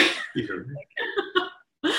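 animal, dog coughing

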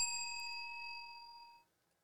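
signal or alarm, bell being rung

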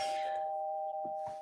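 household object, doorbell ding-dong

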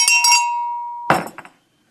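signal or alarm, bell ringing

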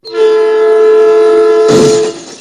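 sound effect, train crash sound effect

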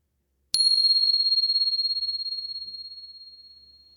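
signal or alarm, meditation bell ringing

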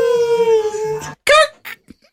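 animal, dog howling

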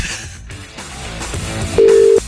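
signal or alarm, phone call ringing tone

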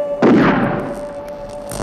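impact, gunshot

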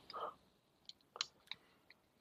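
food or drink, sipping beer

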